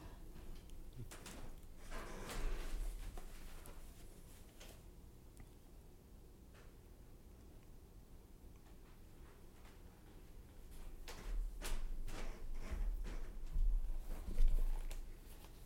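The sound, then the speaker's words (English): A door is opened, with soft clicks and latch rattles early on, then a louder cluster of knocks and handling noises toward the end. “Let me get the door.”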